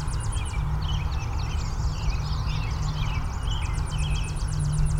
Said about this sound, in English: You can really hear that Tennessee warbler. A lot of birds all around.